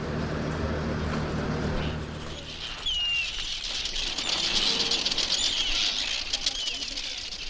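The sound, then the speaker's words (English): A colony of Arctic terns on the Northumberland Coast calls constantly, a dense chorus of shrill, scratchy cries layered over fluttering wing noise, with a low rumble underneath for the first few seconds. “And majority of that sound is the Arctic terns.”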